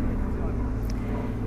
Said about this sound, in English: It's just a plane going overhead. And frankly, dear listeners, I just wanted to say it's one of these seaplanes. You'll hear it.